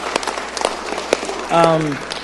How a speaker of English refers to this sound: I just want to start by thanking you and giving you guys a round of applause, because a lot of people couldn't do this without you.